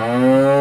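A single loud cow moo, holding a steady low droning pitch for under a second with no talking.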